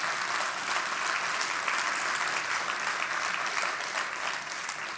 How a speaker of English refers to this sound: Let's give a round of applause for Christ.